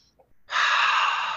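After a brief near-silence, a loud, sustained deep breath rushes in and holds steady for about a second, airy and hissing, with no talking, as a group does breathing exercises.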